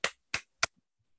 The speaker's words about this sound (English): That was the three claps, the reset.